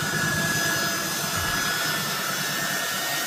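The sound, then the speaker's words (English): The jet engines of a big airplane, apparently at Kabul airport, roar steadily and loudly, a dense rushing noise with a thin high-pitched whine running through it, continuous, with no voices. “Trying to hitch a ride on that big old airplane.”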